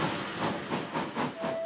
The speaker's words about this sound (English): And with that, the Royal Engine sounded his royal horn. Ta-da-da-da! And puffed away.